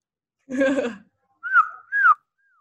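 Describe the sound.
A short vocal burst, then two clear whistled notes imitating a bird call, made by a woman who is a vocalist, each holding steady before sliding downward, with a faint falling trace trailing after.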